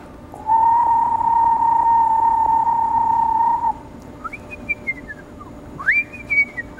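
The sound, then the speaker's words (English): A screech owl gives a long, steady trilling whistle, then a higher quavering tremolo that slides downward, followed by a brief rising note. No one speaks over the calls. “There are different kinds of calls, and the screech owl, you might hear, the most common call you would hear is a sort of descending tremolo.”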